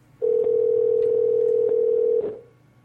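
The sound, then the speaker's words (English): A single steady electronic ringing tone from an outgoing call to a cell phone, one unbroken two-second burst at a constant pitch, loud, with no one talking. “It's ringing.”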